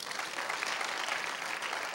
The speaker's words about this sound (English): We give you all the glory in Jesus' name, and all those who agree, give the Lord a big, big, big, big hand clap.